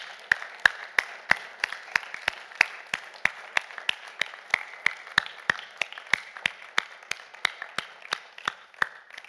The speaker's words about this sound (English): And what we're going to do is we're just going to applaud you. We're going to thank you. I know it's a small gesture, but allow us to honor you in our lives. So could we just do that? Just a massive applause.